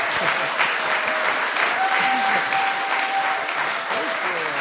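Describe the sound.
Sustained audience applause fills the whole stretch, a dense, steady wash of clapping hands at even loudness, with a few faint cheers or voices mixed in beneath it.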